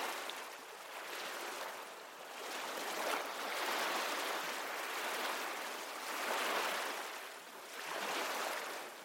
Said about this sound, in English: As you embark on this tranquil journey, allow the rhythmic melody of the sea to wash away stress, bringing you a sense of peace and calm.